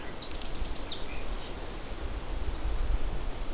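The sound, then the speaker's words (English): A distant songbird delivers quick, high, warbling whistled phrases, like a Canada warbler, faint over a steady rumble of wind or running water; a brief burst early, then a longer trill later. “The bird I can see is kind of far off and I can't get a great visual on it with the binoculars, but it's not inconsistent with the Canada warbler.”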